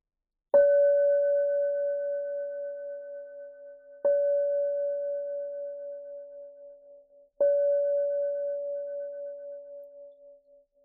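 A meditation bell is struck three times at a slow, even pace, each clear ringing tone swelling and then fading into a long, sustained hum before the next strike. No voices.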